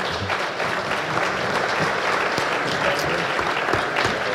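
A crowd applauds steadily, with dense, crackling clapping that holds at an even, fairly loud level throughout, with no voices standing out above it.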